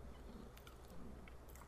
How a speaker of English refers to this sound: Enjoying this cookie? Yeah, I am. He's certainly munching loud as hell.